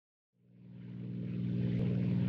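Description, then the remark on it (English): A steady airplane engine drone swells in from silence and settles into a loud, continuous low hum with a rough, throbbing edge, heard from inside the cockpit of an aeroplane. “In our next scene, we find ourselves in the cockpit of an aeroplane.”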